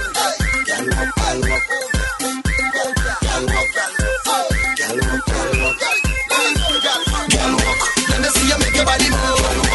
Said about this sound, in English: Yeah, they could have turned on the volume and the whistle a little bit. It's a nice whistle, isn't it? But they turned it on here, so it's nice.